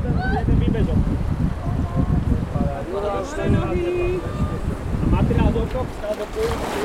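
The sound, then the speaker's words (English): Steady rushing water and wind buffeting the microphone as a raft moves along a river at Strechno, with people's voices calling out over the churn now and then. “So that's Strechno Castle, and let's now get a taste of what it feels like to raft a river.”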